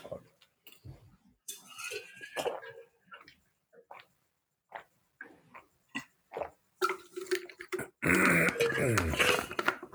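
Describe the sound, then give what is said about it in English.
Someone drinks water from a glass, with a series of short gulps and swallows and small clinks, followed by a burst of loud rustling noise at the end. “I gotta get a drink of water.”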